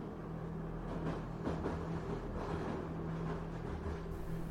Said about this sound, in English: The train has entered another tunnel. Everything goes dark. The sound of the train rumbling through the tunnel echoes off the walls.